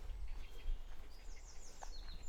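Faint, high bird calls chirp and warble intermittently in the distance over a steady low outdoor rumble, with no one speaking.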